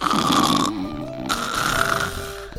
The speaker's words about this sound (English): And then finally, when the moment is just right, he leans over towards you and ever so gently begins to snore.